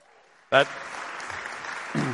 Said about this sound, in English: I know exactly why you're applauding.